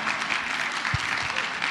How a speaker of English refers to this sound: And so this is, you can clap. Let's all join in. It's fun.